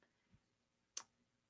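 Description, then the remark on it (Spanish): A single crisp computer mouse click, fairly loud, preceded by a faint soft tap, made to enlarge a picture on screen; otherwise quiet, with no one speaking. “Estas dos muchachas que ustedes ven ahí, vamos a darle clic para que ustedes la puedan ver mejor, más de cerca, ¿no?”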